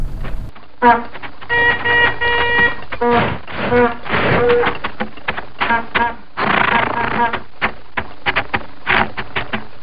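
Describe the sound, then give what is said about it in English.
An old car clatters along with a rapid, uneven mechanical ticking, broken by brief tonal honks and rougher bursts of engine noise throughout. “Well, it's clearly an old car driving down the road.”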